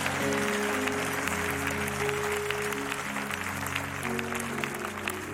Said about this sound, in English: Come on, give God a good hand clap offering.